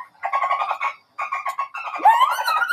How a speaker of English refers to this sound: That's what your dolphin kick should sound like. If it doesn't sound like that, you're doing it wrong. That's false. That's just a dolphin making a dolphin noise.